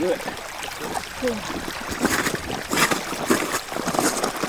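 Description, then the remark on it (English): A meltwater river rushes across the Greenland ice sheet, recorded while standing on the ice, which is about 2 miles thick at its thickest. It makes a steady, full-bodied roar of churning water that swells slightly toward the end, with a faint voice briefly audible at the start. “Is that a rushing river? A waterfall? Yeah, kind of. It's a sound that I recorded standing on a massive piece of ice.”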